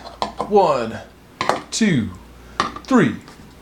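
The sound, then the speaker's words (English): A series of hard plastic knocks and clatters as four eggs are set into a plastic microwave egg pod cooker filled with water, each followed by a short, falling, whining scrape, repeated three times. “Next, add the 4 eggs.”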